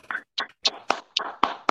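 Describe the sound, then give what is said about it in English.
Six quick fleshy slapping claps in a steady, slightly uneven rhythm, each a sharp smack with a short tail, meant as booty clapping, moderately loud with no talking over them. “Booty clapping sounds.”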